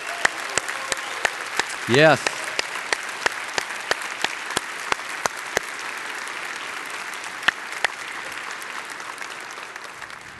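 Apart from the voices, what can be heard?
audience applause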